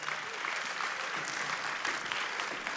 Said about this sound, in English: Let's give this team a big shout of applause.